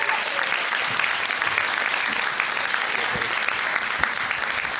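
Steady, loud applause from an audience for the next performer, a dense wash of many hands clapping that holds at an even level for several seconds without pause.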